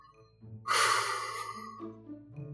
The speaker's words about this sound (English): You breathe pretty heavy on that one.